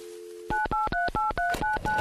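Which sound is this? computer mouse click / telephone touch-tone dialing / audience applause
telephone touch-tone dialing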